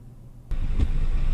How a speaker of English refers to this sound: I think he's getting back in the car now.